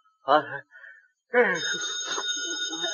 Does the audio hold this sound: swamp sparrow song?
no